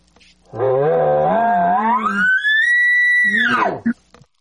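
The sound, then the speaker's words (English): A person imitates a bull elk's advertising bugle: a low, raspy growl slides up into a long, sustained high whistle, then drops sharply back to a brief low grunt and a short chuck. “now you're doing the advertising bugle, or display bugle, as you like to call it.”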